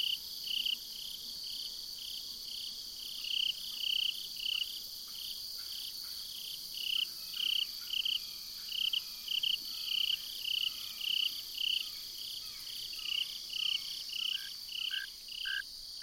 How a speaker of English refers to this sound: So nice, although this is an introduced species that may be displacing a native species, the fall field cricket, which lives in the same habitat and has a similar song.